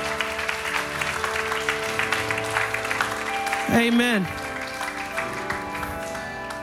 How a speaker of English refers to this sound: Amen. We can get, come on, let's give him a hand. Continue to clap.